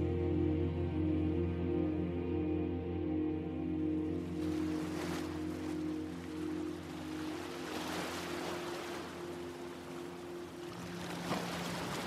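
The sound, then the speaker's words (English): Ocean waves wash in and recede on a shoreline near a lighthouse, with light fog over the water, in broad, hissing surges every few seconds, layered over a steady low droning hum. No one speaks. “I saw Connor waiting on the shoreline near the lighthouse.”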